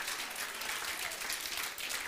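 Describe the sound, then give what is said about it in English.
A light, scattered patter of applause from a small crowd, many overlapping claps blending into a steady, soft crackle that holds evenly for about two seconds with no talking. “Well, boy, that was a light spatter of hand clapping, by the way.”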